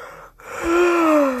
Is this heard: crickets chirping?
no